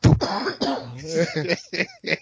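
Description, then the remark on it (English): A voice mimics the coughing fit of a man choking before he died: a rough, throaty burst followed by a strained hacking stretch, then two short sharp coughs, fairly loud. “He was coughing, and then he was silent. That's when I knew he was dead. He was like, cough, cough.”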